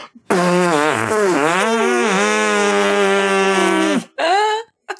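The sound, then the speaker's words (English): A long, buzzing fart noise made by putting the palms on the lips and blowing, loud and sustained for nearly four seconds with wavering pitch, followed by a brief second squelchy burst. “The kind a person makes when they put their palms on their lips and blow fart noises.”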